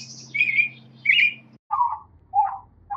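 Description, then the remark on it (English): Loud, robin-like bird chirps repeat about once every half second, starting bright and high, then dropping to deeper, more stretched-out calls over a low background hum. “If a tiny little robin was given too many hormones and its little chippy chippy chirp was expanded, it would sound a little bit like this.”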